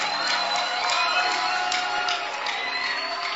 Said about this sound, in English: Keep clapping. Your clapping should be exciting with some shoutings.